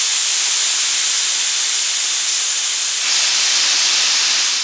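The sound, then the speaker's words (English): A loud, steady hiss of steam blasting from a steam locomotive as it eases to a stop, continuous for several seconds and swelling slightly louder toward the end, with no voices. “I could feel the brakeman ease the locomotive steam engine to a stop.”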